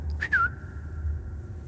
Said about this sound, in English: This bird sings the most beautiful song. It finds a master, a shoulder it likes to perch on. Sings to this person for the rest of its days.